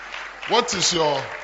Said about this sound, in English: Oh, those who are sitting, you have to clap for them too.